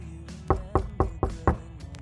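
Five firm, evenly spaced knocks on a door, each a solid low thud about a quarter second apart, loud with no voices.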